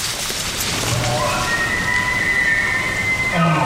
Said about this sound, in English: Everyone stops short when we hear elk in the distance. Martin says it's part of an overpopulated herd that was recently thinned out by a short hunting season allowed by the board.